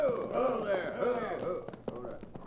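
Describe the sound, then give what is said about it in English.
The hooves of two riders' horses clip-clop along a road in a quick, steady rhythm as they approach, growing clearer toward the end, while a voice talks over them at moderate volume. “Here come two riders.”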